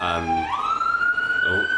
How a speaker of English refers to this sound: Hear the sirens going by.